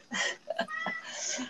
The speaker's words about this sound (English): Sorry, it's my cat.